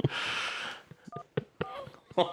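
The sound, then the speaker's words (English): A burst of breathy hiss gives way to a few short electronic keypad beeps, irregularly spaced, as a phone number is dialed on a phone, with faint voices mixed in. “Okay, is it ringing? Yeah, he's going to be so confused because it's going to say my number.”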